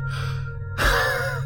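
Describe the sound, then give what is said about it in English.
A voice produces two sharp, strained breaths: a raspy exhale followed by a louder, harsher gasping intake, like someone panting hard through pain. No words are spoken. “I panted hard.”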